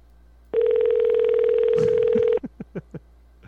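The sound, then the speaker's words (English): A telephone line ringing tone sounds as one long, steady buzzing burr lasting about two seconds, followed by a quick series of four or five short, softer blips. “It's a weird ring. Probably tapped.”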